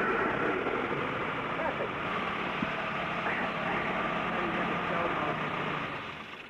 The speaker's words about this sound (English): Perfect. How's that? Sounds very nice. Good little engine in that car, definitely.